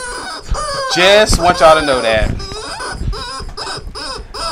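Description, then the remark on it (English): A little chicken makes a drawn-out, wavering crow-like call, followed by a string of short, rhythmic clucks, fairly loud. “This little chicken gets on my last motherfucking nerve.”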